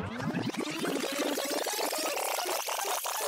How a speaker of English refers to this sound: All right, well, let's rewind it, and I'll put a little rewind sound clip or something.